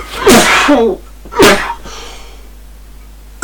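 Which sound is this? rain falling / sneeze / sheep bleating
sneeze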